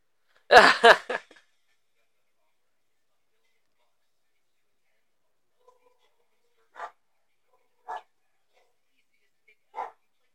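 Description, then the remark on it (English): A dog barks in a loud burst of several quick barks, then after a pause gives three more single muffled barks spaced about a second apart, from outside a door. “Oh, there's a fucking dog outside the door.”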